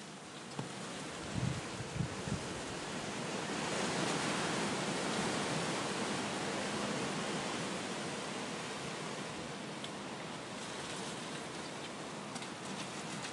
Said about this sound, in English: It makes for very peaceful sounds, as this is in the early hours of the morning. It's dark and it's just the wind and the rustling of the trees, and it's so nice.